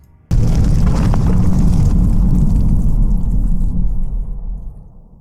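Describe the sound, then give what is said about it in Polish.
A sudden loud explosion shakes a building and cracks a wall, followed by a heavy, sustained rumble that shakes and roars for several seconds before slowly fading away. “Eksplozja wstrząsa budynkiem, ściana pęka.”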